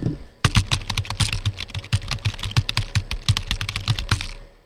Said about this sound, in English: Know what that is? That's me typing on my keypad. And what researchers have done is they've taught AI to recognize the sound of every key.